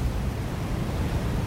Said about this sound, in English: August 14th, 1967. Gale force winds off the coast of England. Choppy waves, foam blowing in streaks across the water.